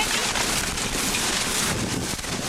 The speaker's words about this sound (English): It's absolutely downpouring. I don't know if you heard that, but the storm just blew their pickup's back window out.